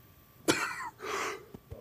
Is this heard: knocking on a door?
no